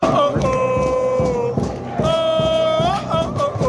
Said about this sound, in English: Big home win. Rammed crowd. Look at the crowd here, dude.